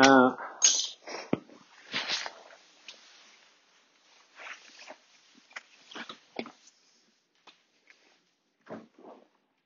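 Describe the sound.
A female dog snuffles and sniffs in short, irregular bursts as she comes indoors, with faint padding movement in between; a person's voice is briefly heard at the start.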